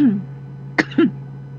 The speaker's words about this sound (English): I'm trying to have a coughing fit here, sorry.